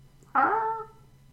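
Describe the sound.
A person imitates a mournful budgie squawk: one drawn-out, whiny vocal cry lasting about half a second, starting abruptly and sagging slightly in pitch as it fades, with quiet background otherwise.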